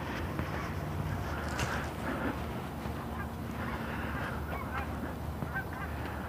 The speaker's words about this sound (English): A couple loose geese flying along. Triplet and a couple of pairs.